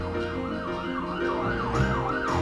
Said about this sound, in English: Those sirens are not in the original recording. We have a special version here.